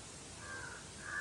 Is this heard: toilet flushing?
no